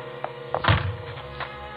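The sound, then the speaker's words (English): Someone tries a locked front door with frosted glass: a few dull thunks and rattling clicks, with one heavier knock in the middle, over a low steady hum. No voices. “In a minute, he tried the door.”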